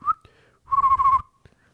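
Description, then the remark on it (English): A person whistles a quivery, wavering note after a brief chirp, the tone trembling in loudness as it holds for about half a second, clear with no talking. “Oh, it's like a quivery.”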